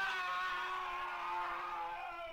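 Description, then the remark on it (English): A loud, sustained scream with a strained, harmonic-rich tone holds steadily for a couple of seconds, sagging slightly in pitch and fading at the very end, with no talking over it. “And I'm sure just like that scream, there was a lot of it around this time period.”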